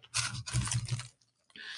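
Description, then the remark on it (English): Moist chewing and mouth sounds of someone eating a piece of spiced chocolate, in a few quick bursts, with a brief pause before another burst, no one speaking. “excuse me, I'm chewing on a piece of chocolate.”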